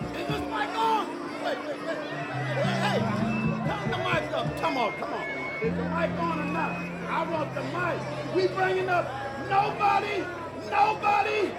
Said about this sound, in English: The song fades and we slowly begin to hear murmurings of a crowd. Soon, a hype man is heard, and we get the impression that we're now in attendance at a live show.